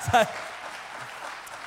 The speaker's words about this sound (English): I'm applauding myself, it's so good.